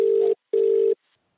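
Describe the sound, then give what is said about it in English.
Ringback tone of an outgoing phone call to the chief cricket writer of The Australian newspaper: steady, mid-pitched electronic buzzes in short paired bursts with a brief pause, then silence before the next ring begins. No voices. “But to start things off, we're going to call the chief cricket writer for the Australian newspaper,”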